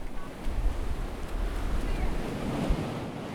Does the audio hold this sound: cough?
no